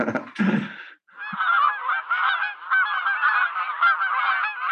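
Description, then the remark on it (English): A dense flock of geese honks continuously, many overlapping calls forming a loud, clamorous chorus after a brief opening burst and pause. “That actually reminds me of Alfred Hitchcock's The Birds, and that was a very threatening movie for me.”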